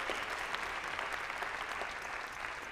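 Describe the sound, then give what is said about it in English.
A church audience claps their hands in praise to God during a morning service, steady, dense applause, the many overlapping claps forming a continuous, fairly loud wash of sound throughout. “Somebody give God a hand clap of praise this morning.”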